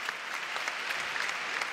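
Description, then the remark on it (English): An audience breaks into steady applause, a dense wash of many hands clapping at once with sharp, overlapping claps at an even loudness, no voices standing out. “You should clap that shit up because it's a problem, and let me explain why.”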